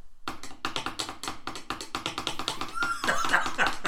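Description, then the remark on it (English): A quick drum roll tapped out with pencils: a fast, even stream of sharp clicky taps for a few seconds, loosening toward the end as a voice comes in over them. “Can I get a drum roll? Or, no, can I get your other pencil?”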